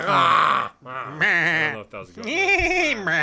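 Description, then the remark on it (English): Male voices of meat factory workers imitate goat bleats, three loud, wavering, nasal bleats separated by brief pauses, with no ordinary speech. “he gets to the meat factory guys, and like he starts like hanging out with them, and they like just chuckle a lot and make goat noises.”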